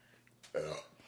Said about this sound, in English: Gross. Well, time to burp and sneeze. Was that your question? Just no, a burp?